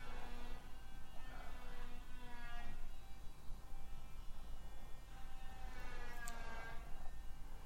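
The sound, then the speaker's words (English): A power tool runs continuously, giving a steady droning whine with layered harmonic tones whose pitch wavers slightly, over a constant low rumble. No one speaks. “Why people like power tools.”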